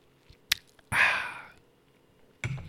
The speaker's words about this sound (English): So, a little sip of water here.